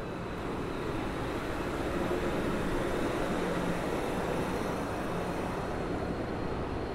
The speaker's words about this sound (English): Quite a big station here. It's the end of the line. This is the Santa Fe Depot at San Diego, and I'm walking into an area of high-rise office blocks, modern buildings.